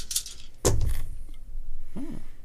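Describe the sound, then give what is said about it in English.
Dice are rolled during a board game and clatter onto a hard surface: a light rattle first, then a loud thudding tumble that quickly settles, followed by a short murmured vocal sound near the end. “Oh, this is an interesting roll.”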